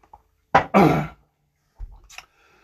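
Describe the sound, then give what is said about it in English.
A person clears their throat loudly in a harsh, raspy burst, then after a short pause gives a softer, brief swallowing sound while drinking water. “I need a drink of water.”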